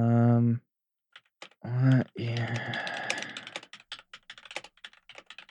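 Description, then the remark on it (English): Rapid clacking of keys on a computer keyboard fitted with new key switches, a dense run of crisp clicks tapering into scattered taps, preceded by a couple of short voiced sounds. “Oh, I got new key switches for my keyboard.”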